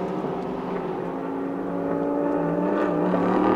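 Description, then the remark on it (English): A steady, throaty race car engine drone with layered harmonic tones, growing slightly louder toward the end as the number 12 car comes up the hill on the track, having just been passed by car 55, with no voices. “And up the hill then comes the number 12 car, having just been passed by car 55.”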